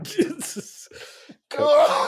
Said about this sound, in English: There you go. Get it all out, brother. Before he coughed, he knew that's what was coming. He's like, oh, God.